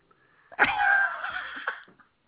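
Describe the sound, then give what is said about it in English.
A dog snoring from across the room: one long, raspy, wheezing breath that starts abruptly and fades after about a second, fairly loud and standing alone with no talking. “Is that your dog snoring?”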